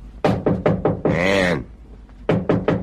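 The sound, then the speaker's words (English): A fist pounds heavily on the door of a room in two quick rounds of hard thumps, four blows then three, with a loud voice calling out in the pause between: Logan, son of the state governor, played by Vincent Price, pounding on the door. “Logan, played by Vincent Price, opens the scene as he pounds on the door of your room.”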